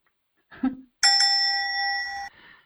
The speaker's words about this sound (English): I got a bell this time!